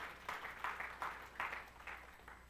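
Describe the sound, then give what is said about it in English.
A group claps along in a steady, rhythmic beat to praise God, the overlapping claps blending into a soft wash of applause, with no one speaking over it. “Would you give God a big praise by clapping your hands?”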